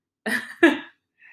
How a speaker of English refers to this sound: Because I had a cough attack because of the spiciness.